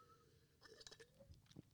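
A quiet sip of water: soft slurping and wet mouth sounds in a brief cluster, followed by a swallow, with no talking.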